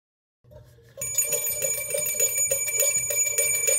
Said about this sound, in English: It's a little half-hearted. The bell ringing's a little half-hearted this morning.